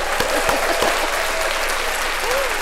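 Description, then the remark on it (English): Steady applause from a group fills the whole stretch, a dense, even clatter of many hands clapping at a constant loudness, with a few faint voices mixed in underneath. “I got the applause.”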